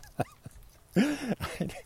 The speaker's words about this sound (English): It's the virtual dog walk. So for those of you who do own dogs and have a hard time getting him out for a walk, you can put this podcast out and see if your dog enjoys it.